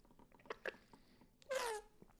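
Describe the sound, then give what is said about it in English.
A drink of water from a water bottle: a few soft mouth clicks, then a short, bright slurping sip near the end. No one speaks, and the background is otherwise quiet. “Excuse me for taking a sip of water here from my water bottle.”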